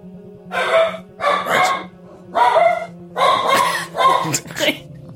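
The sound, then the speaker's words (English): Dogs bark loudly, about six harsh bursts in an uneven rhythm, with a low steady hum running underneath throughout. “We'll have to use the spirit hounds. They have dogs with them.”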